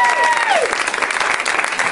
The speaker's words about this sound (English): Please welcome the beautiful brain of David Cross, everybody. Now is when you clap.